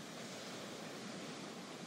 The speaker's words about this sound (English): You look up and all you see is more sand in front of you, but you can hear the ocean. Walk towards the sound of the ocean.